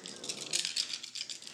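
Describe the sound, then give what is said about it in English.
Several six-sided dice (d6) rolled for damage in a tabletop game clatter and rattle together in a quick, continuous burst of bright, clicking knocks, with uneven pulses of tumbling over about a second and a half and no voices. “I need 8 d6. Do you need another one? I don't have another one. No, so it's there. Fine. I'll just roll two more.”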